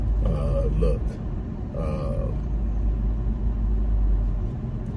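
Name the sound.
car driving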